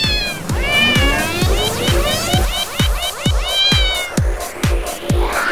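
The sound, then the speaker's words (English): A rapid series of sampled cat meows played as notes on a cat piano app, each meow struck in a steady, bouncy rhythm with overlapping pitches, loud. “It's called Cat Piano.”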